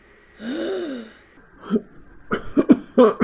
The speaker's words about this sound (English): He coughs. When he does this, his whole body trembles and aches.